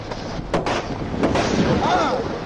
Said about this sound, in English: Why did you shoot me?